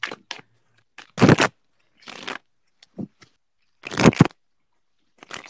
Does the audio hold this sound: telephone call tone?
no